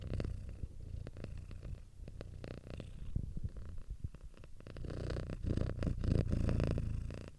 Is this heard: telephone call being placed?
no